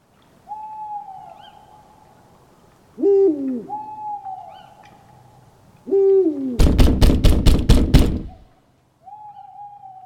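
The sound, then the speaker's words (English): After midnight, an owl hoots repeatedly in the quiet night, then about seven heavy, rapid, loud knocks thud on a heavy wooden trapdoor leading to a basement, before the owl resumes faintly. “It's after midnight, the next day, when Gus knocks on the heavy trapdoor leading to the basement where Pedro has recently taken up lodging.”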